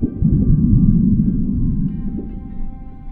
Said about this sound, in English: Now listen to the sound of the body waves from the 2011 Tohoku earthquake in Japan. First, the P waves.